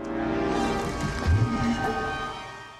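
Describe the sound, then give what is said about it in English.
A toilet tank lid is moved around on the tank against the porcelain, used as the sound effect of the Ark of the Covenant being opened, giving a steady, grinding creak with shrill squeaky overtones and a few low thumps, loud and continuous for about three seconds. “That was made with the back of a toilet. Moving the lid around on the tank.”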